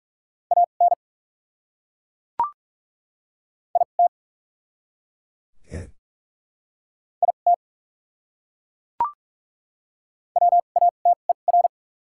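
Morse code practice tones sending the top 100 words at 45 words per minute with doubled character spacing: short groups of quick, steady mid-pitched beeps separated by long silent gaps, with a couple of sharp clicks and a brief low thump between them.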